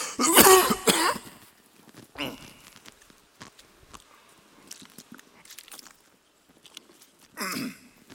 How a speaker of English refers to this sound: My wife's over there going, oh Lord, he's coughing again.